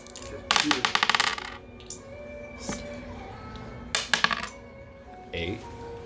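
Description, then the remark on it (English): Dice clatter and rattle across a hard tabletop, one long tumbling roll followed by a shorter second roll, over a quiet background hum. “I'm not afraid of the dice.”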